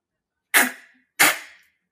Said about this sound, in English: Yeah, I'm gonna cock the gun, then pull the trigger real fast. You ready? Okay, that'll probably make an interesting sound.